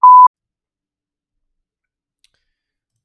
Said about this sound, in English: Podcast listeners, let's take a beep. We'll be right back.